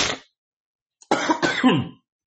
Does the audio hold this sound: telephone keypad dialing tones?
no